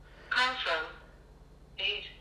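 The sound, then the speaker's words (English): A phone ringtone for an incoming call plays: two quick tonal bursts, a short pause, then a third, bright and melodic with no one talking over it. “It's 807, though. I'm going to answer this. I don't know who it is.”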